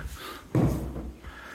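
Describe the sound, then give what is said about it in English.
A door swings shut with a single solid thump, followed by a brief low rumble as it settles. Faint background hum before and after, with no one speaking. “So, I forgot to shut that door.”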